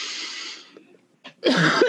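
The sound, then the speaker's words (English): A long breathy exhale fades out, then a short sharp catch and a rough, voiced cough, with no talking. “Sometimes I cough to help release the energy.”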